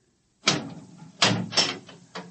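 A door being opened, heard as a few heavy clunks and rattles of latch and wood spread over about two seconds, with no voices.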